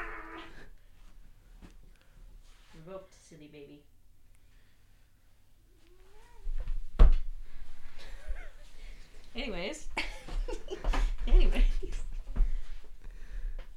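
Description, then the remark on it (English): A few short meow-like calls early on, then loud rustling and bumping right against the microphone as a cat shifts around it, with occasional thumps and quiet voices. “We're going to get a Doppler effect with the cat with the microphone.”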